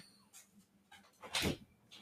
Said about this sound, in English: And I'm letting the dogs in right now because I don't know …. Pay no attention to those noises in the studio, which is also our media room,